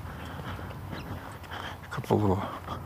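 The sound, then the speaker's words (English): A squirrel gives a short, sharp, loud burst of chattering calls, rising out of a steady outdoor background hiss. “Squirrel making noises.”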